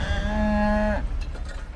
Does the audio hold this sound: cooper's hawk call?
no